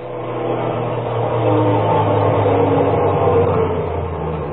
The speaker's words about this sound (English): Well, you're in luck. Here comes the garbage truck back from his run. I'll just stop him.